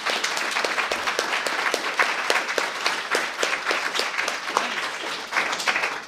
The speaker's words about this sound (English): Cool. All right, thank you. We didn't yeah. give you your applause. We should.